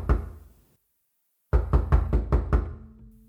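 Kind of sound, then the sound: household object, knock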